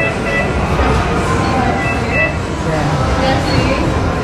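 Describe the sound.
A miniature food delivery train rolls steadily up to a table delivering a meal, a loud continuous rumbling whir with faint higher squeals, while voices murmur around it.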